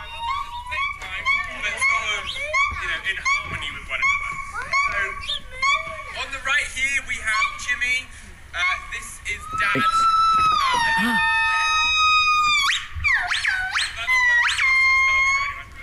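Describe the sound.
Monkey calls: loud, high-pitched whooping and wailing cries, rising and falling in pitch like a car alarm, repeated in overlapping bursts, with chattering squeaks and some voices in the background.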